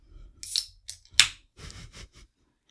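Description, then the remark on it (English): A soda water container being opened: a brief airy hiss, then a sharp pop with a burst of hissing, followed by a few short fizzy crackles, with no voices. “Nice sound of some soda pop. Well, soda water.”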